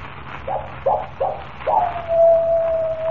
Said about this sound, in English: That is the second time. When the coyote howls three times, I die.